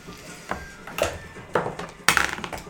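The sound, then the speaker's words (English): Dice clatter across a hard tabletop during initiative rolls in a game, in a few sharp bursts of clicking and rattling, about four distinct tumbling impacts, the last one loudest, with no voices. “It's an odd number to be rolled on a dice.”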